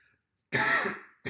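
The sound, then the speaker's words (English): A single loud throat-clearing cough bursts out after a brief silence, rough and raspy for about half a second before fading, with the start of another noise cutting in at the end. “So if you didn't finish off the cough then.”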